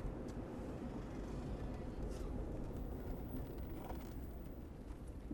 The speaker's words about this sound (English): Traffic.